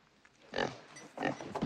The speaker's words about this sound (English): But when I got Misery here, everything changed. She just makes me smile so. She's a fine pig is what she is.